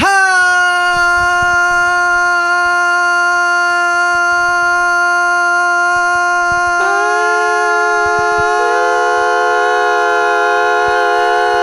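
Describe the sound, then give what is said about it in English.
A loud, sustained horn blast like a train horn blares continuously for about twelve seconds, its pitch jumping higher partway through, with no voices over it. “That's like a train horn.”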